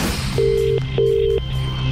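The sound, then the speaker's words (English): Two steady electronic phone tones sound in quick succession, each lasting under half a second with a short pause between, over a low background hum, as a call is made to a prize draw winner. No one speaks. “clung to their phones when Wayne and Lorraine made the call”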